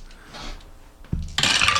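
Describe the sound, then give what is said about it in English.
A large heap of dice is poured out for a damage roll: a dull thump, then a loud, dense burst of bright, rattling clatter as they scatter and keep clicking against each other. “Pour them all on the top of the...”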